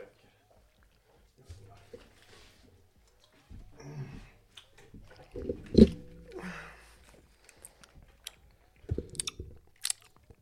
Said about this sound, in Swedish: Fan, man ska aldrig tugga godis i micken. Det låter så jävla äckligt, men satan så gött med frukosten.